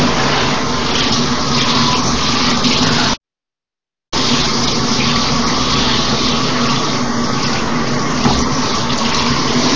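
A shower head sprays water in a steady, loud hiss, broken once by a short silence about a third of the way through before the flow resumes. No one speaks.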